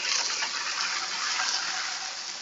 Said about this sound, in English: Ooh, that sizzle means it's nice and hot.